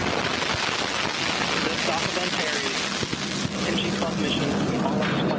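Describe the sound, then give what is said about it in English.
A Northrop Grumman Antares rocket launch roar at liftoff from NASA's Wallops Island Flight Facility on the Virginia mid-Atlantic coast, carrying a cargo ship: a loud, steady wall of rumbling noise with harsh crackling and popping running through it, unbroken for about five seconds. “The cargo ship had launched 2 days earlier aboard a Northrop Grumman Antares rocket from NASA's Wallops Island Flight Facility on the Virginian mid-Atlantic coast.”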